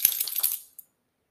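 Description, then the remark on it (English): A female dog shakes her head, setting off a quick burst of bright metallic jingling from her collar tags for about half a second, then one last faint clink. No one speaks. “My dog agrees as she shakes her head.”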